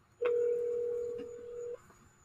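A single steady telephone tone, placing a phone call, holds for about a second and a half at a clear, even level, then cuts off abruptly, with a faint high whine behind it and no talking.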